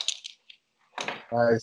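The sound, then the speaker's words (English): Bright metallic jingling of keys on a small lanyard: a few quick clinks, a short pause, then a fuller rattle, with a brief voice sound at the end. “Yeah, it's a little lanyard for my keys.”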